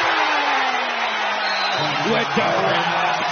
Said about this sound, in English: I mean, take a listen to this Cohen Carr dunk and listen to the crowd.